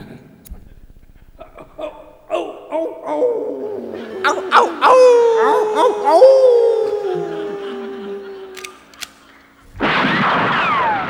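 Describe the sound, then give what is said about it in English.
A coyote-style howl rises and wavers over a couple of seconds, with yips and sharp cracks around it, then fades before a sudden burst of loud, noisy sound cuts in at the end. “That show always begins with that stupid coyote howl thing.”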